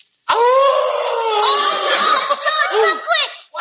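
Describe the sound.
A man's voice imitates a dog's howl: one loud, sustained, wavering cry lasting over three seconds, its pitch bending and dipping near the end before it cuts off.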